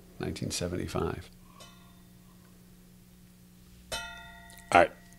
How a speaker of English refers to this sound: Oh, I'm sorry. Oh, you're ringing the bell.